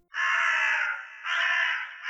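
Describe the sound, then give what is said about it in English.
A large black crow, perched atop a toppled stone monolith, screeches loudly: two long, harsh, rasping caws, the second following after a brief dip, with no voices or other sounds around them. “The fox watched Aveline go, but a flutter of wings and an ear-piercing screech drew his attention back to the mangled battleground.”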